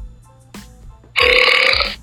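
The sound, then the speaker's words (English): A loud, drawn-out burp rumbles for nearly a second, following a short quieter sound and some faint background noise. No one speaks. “So gross.”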